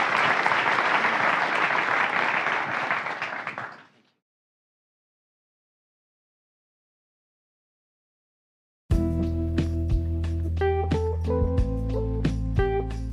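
A crowd applauds steadily for about four seconds, then the clapping fades into silence. After a long pause, instrumental music starts and continues to the end.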